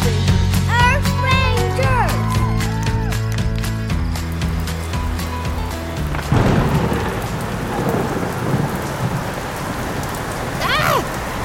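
A tuneful musical passage with sliding, whistle-like notes gives way midway to a steady, loud wash of pouring rain with a rumble of thunder and a rising whoosh near the end, a windy fall rainstorm.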